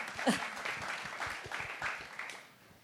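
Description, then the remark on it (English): An audience at an evening research talk event applauds with steady, dense clapping, a continuous crackle of many hands that holds at a fairly even loudness before tapering slightly at the end. “Oh, we're going to clap.”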